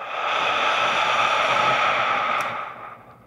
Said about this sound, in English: Breathe in. Lion's breath out.